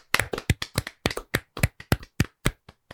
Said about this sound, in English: And as we do at the end of every single bracket, we are going to clap it out for our kings.